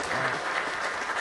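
An audience applauds steadily, a dense wash of many hands clapping at a constant loud level throughout the short stretch, with no pauses or distinct individual claps standing out.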